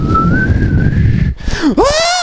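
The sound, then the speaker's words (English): Someone attempts to whistle a song's intro, a shaky, wavering tune, holding a steady note before breaking into a sliding swoop and an airy, uneven finish, over a low rumble of background noise. “Like, starts off with the whistle intro, and now everyone knows I can't whistle.”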